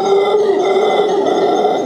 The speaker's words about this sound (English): Shh! You're too loud, growled a voice from the back of the cave. It was a humongous brown bear who just happened to be sleeping in the back of the cave.